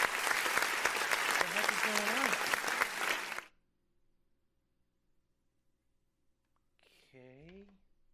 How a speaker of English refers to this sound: But well, it was a round of applause. It was a round of applause. Apparently, they liked what they heard. So that was weird. That was very weird because I didn't even know where the hell that was coming from.